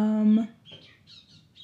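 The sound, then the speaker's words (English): A brief voiced sound opens, then a bird calls very close to the house with a few short, high chirps in quick succession, moderately soft against a quiet background. “There's a bird very close to the house right now. I can hear it.”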